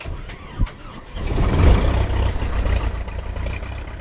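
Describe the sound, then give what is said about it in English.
The engine of a lightweight two-seat experimental Super Cub propeller plane, flying over slot canyons and mesas in southeastern Utah, drones, quieter at first with a short thump, then swelling after about a second into a steady, loud, low rumbling roar that holds to the end. “I'm in his two-seat plane. It's called an experimental Super Cub.”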